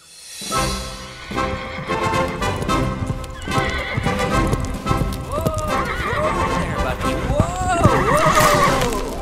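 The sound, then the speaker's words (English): A horse named Bucky whinnies repeatedly with rising and falling squeals while hooves clip-clop steadily underneath as it is ridden at a trot and a light gallop, loud, with some voices mixed in. “Such a good horse, Bucky.”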